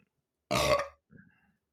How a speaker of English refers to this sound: What's wrong? Stop burping, bro. Wait, I think this happened last time, too.